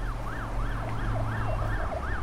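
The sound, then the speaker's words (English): Sirens of black cars with flashing lights and tinted windows, carrying Russian officials as they zip around a city, wail in quick, repeating rising and falling sweeps, clear and steady over a deep rumble of engine and traffic noise. “Black cars with sirens, flashing lights and tinted windows zipped around the city.”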